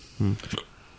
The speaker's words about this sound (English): Hmm. Bless you. That was a hiccup.